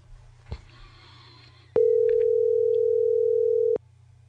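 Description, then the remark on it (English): A single loud, steady phone ringback tone sounds for about two seconds, cutting in and out abruptly over a faint low hum, with no one speaking. “It's already ringing.”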